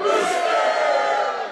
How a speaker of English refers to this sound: I want you to yell rooster, and then we'll do, if you can't go this weekend, you got to yell hen, just so we get an idea of how many people here are going to be hunting on opening day in South Dakota. One, two, three, rooster.